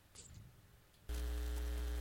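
Quiet background noise gives way abruptly to a loud, steady electrical hum coming in through one audio line into a broadcast computer, with a strong low drone and stacked harmonics, continuing unbroken to the end with a buzzy, static-like edge.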